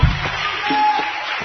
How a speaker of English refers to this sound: Let's give the Lord a clap offering for that. Hallelujah.